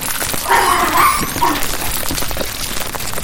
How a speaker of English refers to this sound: That's a lot of puppies.